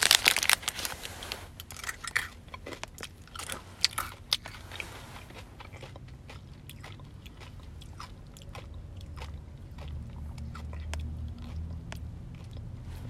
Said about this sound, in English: Hello, this is going to be an annoying, crunch-filled note to self.